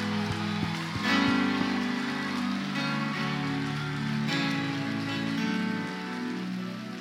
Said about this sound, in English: Give the Lord a mighty hand clap of praise. Clap like you believe it. Clap like you have adapted. Come on.